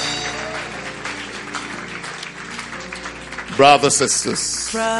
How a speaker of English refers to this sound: God bless you. Clap for them as they go back. Clap. It's a beautiful thing to be saved.